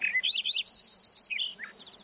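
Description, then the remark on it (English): Songbirds singing on an autumn morning in October, including a Lincoln sparrow from a hedgerow and a fox sparrow: a bright, rapid warbling phrase of high chirps and trills, clear, followed by a short burst of more notes, with no voices present. “The birds' voices declare, in no uncertain terms, that autumn is once again upon us.”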